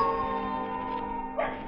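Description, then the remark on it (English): Old Nugget the dog howls on a warm night, answering coyotes up in the hills, in a long, steady, wavering wail with rich harmonics, broken near the end by a short, sharper yelp or bark. No one speaks. “Old Nugget the dog was carrying on a long-distance conversation with his country cousins, the coyotes up in the hills.”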